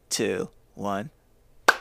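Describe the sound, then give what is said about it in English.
Two short spoken words followed by a single sharp slate clap of hands, a crisp, loud snap that cuts off quickly, marking the start of an ad recording. “All right, let's slate clap with me. 3, 2, 1.”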